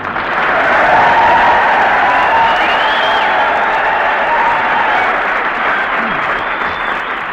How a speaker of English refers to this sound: Here we are at old Camp Callan. All right, boys, come on, start yelling.